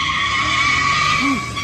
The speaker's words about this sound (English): He passed out at the steering wheel with his foot on the accelerator. You can hear in the audio the car still revving up against the bus.